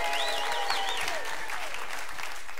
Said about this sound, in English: We have one more message in this series in 2 weeks, but next week is Mother's Day. What a pathetic clap on that one. My goodness, Mother's Day!